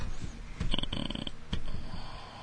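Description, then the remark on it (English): A person makes a short, low, rough growling noise from the throat, rumbling and snort-like, moderately loud, with no talking. “Yeah, is that like growl or? I didn't realize you could hear that.”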